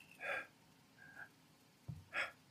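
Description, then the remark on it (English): A voice imitates labored, wheezing breathing: two strained gasping inhales about two seconds apart, with a faint raspy sound and a low throaty catch between them, fairly loud. “And I remember laying down on my living room floor and my breathing was like, it was like this.”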